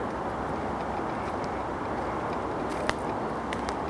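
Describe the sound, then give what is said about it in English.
A steady, low rumble of car traffic, heard while outdoors in nature, fills the whole recording as an even wash of noise, with a few faint ticks and one brief click over it, and no one speaking. “That's the only thing, you can still hear the rumble of cars.”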